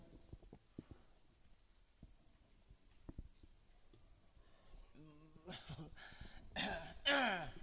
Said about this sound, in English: Just having a bit of a cough, I'm all right.